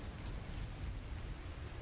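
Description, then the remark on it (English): Steady storm ambience of wind and rain, a dense continuous wash of hiss over a deep low rumble, fairly quiet and unbroken, with no voices. “She says, getting to about the halfway point, getting a good look at you through the wind and the rain.”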